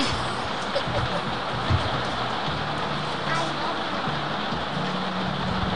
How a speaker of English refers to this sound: Okay, and now it's pouring rain.